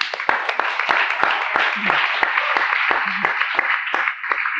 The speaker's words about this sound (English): It's a reward for putting your hand up. Give her a clap.